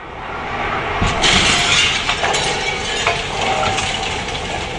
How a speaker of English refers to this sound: The demolition of some of Christchurch's most historic structures is underway. Well, this is a site which will be repeated thousands of times in Christchurch. I've just watched the destruction of this old mansion